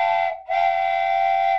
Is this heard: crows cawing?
no